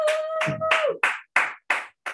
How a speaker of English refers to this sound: Okay, there you go. Let's just, can we clap for him one more time, please?